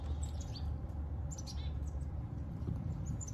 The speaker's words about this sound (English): a cheerful bird right there, a couple, three of them. Get out of here, birds. I'm trying to feel sorry for myself, all right? Stop trying to cheer me up.